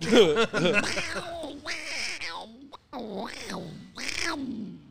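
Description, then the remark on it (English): A person makes a series of raspy, nasal duck-like quacking noises with their voice, several bursts in a row, fairly loud with short pauses between them. “Work on a little bit more. You'll be close to Donald Duck.”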